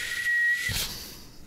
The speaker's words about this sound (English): I'm gonna classify that as a win. Really? I learned how to whistle. I think you got that.